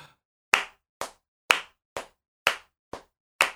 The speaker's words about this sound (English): So let's just clap together again. And you know, there's a particular kind of feel that comes out when our claps correspond compared to when your clap is on its own. Okay, so let's do that again. Just clap.